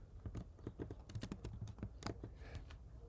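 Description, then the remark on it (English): Rapid, irregular typing on a computer keyboard, a steady patter of sharp clicks and clacks, with no voices. “It sounds like you're typing an essay over there.”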